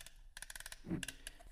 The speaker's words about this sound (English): This is the alarm. And each maneuver, each click of the knob, and you can hear that.